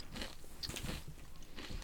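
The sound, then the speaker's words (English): Loud crunching of someone chewing crunchy tortilla chips, with several rapid bites breaking in quick succession and no talking. “I feel like I chew really fast. I feel like I eat really fast.”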